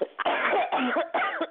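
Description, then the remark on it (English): A short run of harsh, raspy coughs, three or four bursts in quick succession, fairly loud, with no talking. “I have got a cough starting, actually.”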